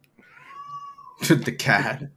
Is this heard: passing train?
no